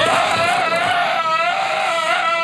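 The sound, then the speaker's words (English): A harsh, distorted scream of the creature Belial, a spring-loaded animatronic popping out of a basket in a horror film, loud, holding one continuous shriek with a warbling, wavering pitch and no pauses or talking. “They kiss and he boom pops out of the basket and is screaming in that great Belial voice.”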